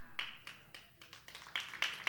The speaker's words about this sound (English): I didn't think I'd get a lot of hand claps for that.